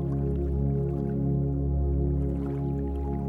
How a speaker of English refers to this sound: Hear the gentle noises of the river as you sit here peacefully